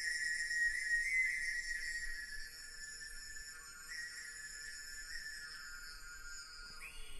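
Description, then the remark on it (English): A man whistles one long, steady high note through his mouth, holding it for several seconds with a slight wobble in pitch, then sliding upward at the end. Fairly quiet, with no talking. “That whistle.”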